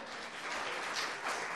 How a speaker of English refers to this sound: And to be honest with you, even if I never told them thank you, you know, they deserve a round of applause too for every single man in this house that stands up for their family and fights for their family.